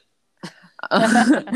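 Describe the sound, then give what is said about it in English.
A sharp, abrupt hiccup, then a quick pair of smaller hiccups in rapid succession, running straight into a longer voiced vocal sound. “You gotta get those hiccups under control.”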